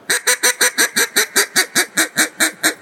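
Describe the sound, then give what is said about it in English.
A duck call blown in a fast chop call: about thirteen short, sharp quacking notes in a quick, even rhythm, loud and close, with no talking. “The chop chop call, it's a real fast duck.”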